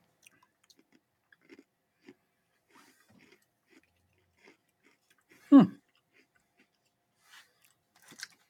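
Crunching of a crisp Oreo sandwich cookie with sugar crystals in the cream: one loud, sharp crunch stands out amid scattered quieter chewing clicks and smacks, with a final few crunches near the end.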